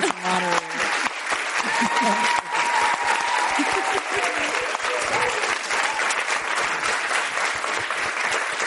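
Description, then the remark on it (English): Sustained applause from an audience, a dense, steady wash of clapping lasting several seconds, with a few voices calling out faintly early on. “Please, another round of applause for our thank you.”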